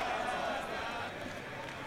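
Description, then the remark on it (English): A crowd chanting together at the wall, celebrating Sabbath peace, a dense, steady wash of many voices that holds at an even loudness throughout, with no single speaker standing out. “More chanting in the background there going on, celebrating Sabbath peace.”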